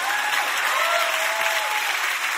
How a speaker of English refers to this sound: If y'all clap, I can move on to number three.